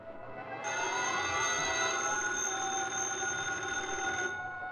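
telephone bell ringing

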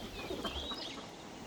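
chickens clucking

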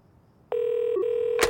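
telephone dialing and ringing

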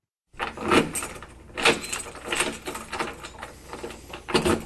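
door being opened

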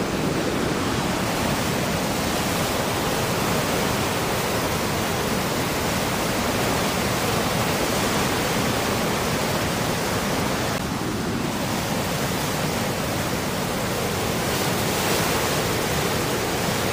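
rushing river water

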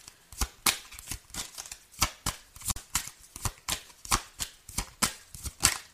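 tarot cards being shuffled

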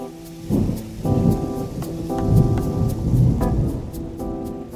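thunderstorm with rain

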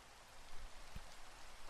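rain falling with thunder

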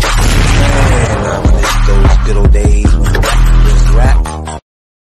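dogs barking sound effect

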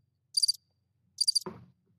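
cricket chirping sound effect

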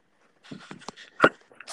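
dog panting and whimpering

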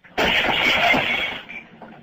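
window glass breaking

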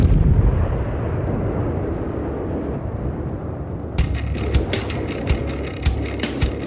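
explosions

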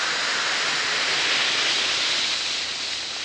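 effervescent tablets fizzing

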